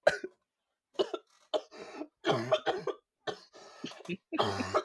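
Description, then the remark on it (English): A harsh coughing fit: a string of raspy, irregular bursts over several seconds, ending in a longer, strained hack. No talking. “Oh, you fucking activated the COVID cough in me.”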